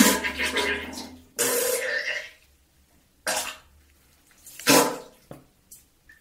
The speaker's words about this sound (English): Thank you for the fart sounds, for the poo-poo sound.